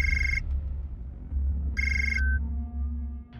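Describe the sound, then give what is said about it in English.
A telephone rings twice in short electronic bursts separated by a pause, clear, over a steady low hum with no talking. “I can even control your phone from in here.”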